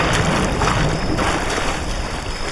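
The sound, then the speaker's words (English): Steady, dense wash of lake water sloshing and lapping in a video game, a constant ambience with soft swells and no voices, as the player's character is in a lake. “Oh, we discovered a thing, and we are now in a lake.”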